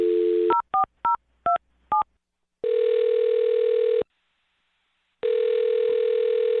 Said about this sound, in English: I'll dial his phone number right now, and you can make your Awkward Tuesday phone call